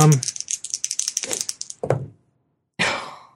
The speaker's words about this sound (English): Okay. Let's see what I roll. Get the dice out.